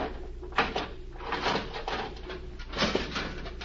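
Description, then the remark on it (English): Scraping and creaking as a jimmy pries at a steel cabinet door, several strained, grinding bursts over about four seconds with no voices. “Now, if I can get the jimmy behind the steel door.”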